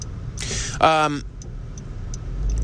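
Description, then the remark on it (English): Faint, evenly spaced clicks of a car's turn signal tick over a low engine rumble inside a vehicle, with a brief burst of voice partway through. “I can hear your car. Blinker, too.”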